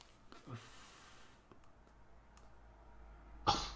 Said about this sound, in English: Bless you, mate, though.